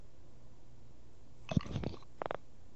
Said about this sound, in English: Before we start, I do want to hear one big gulp of Elijah Craig.